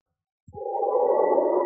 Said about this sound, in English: Now, as howling winds echo across the snow-covered reaches of the wild northwest,